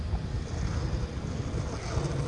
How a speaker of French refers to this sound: Je sens le vent sur mes joues, sur mes mains.